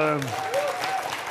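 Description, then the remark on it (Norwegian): A crowd at a gathering in Beitostølen claps steadily throughout the short stretch, dense and fairly loud, with a voice briefly audible over the applause at the start and faint tonal cheering mixed in. “Så gir han en klapp her.”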